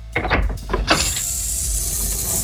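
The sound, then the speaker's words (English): A door is pushed open by hand with a short burst of creaks and scraping knocks, then settles into a steady, airy hiss from the space beyond. “I delicately place my hands on the door and press.”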